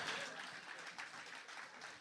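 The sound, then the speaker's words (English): A crowd claps steadily for about two seconds at a preacher's urging, a dense, even wash of many hands that sounds a little subdued, with no clear voices above it. “I want you to clap like you mean it.”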